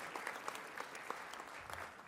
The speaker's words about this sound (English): Have a round of applause for this volunteer over here. I'll get your name in a second. Come out.